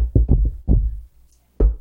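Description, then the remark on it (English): A quick cluster of dull, low knocks on wood, three in fast succession, then another, a short pause, and a final firm rap. No talking. “Let's knock on wood one more time.”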